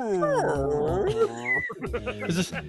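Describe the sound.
A voice stretches out long, warbling, pitch-sliding moans in imitation of a whale call, like Dory speaking whale in Finding Nemo, loud, then breaks into shorter, choppier vocal sounds.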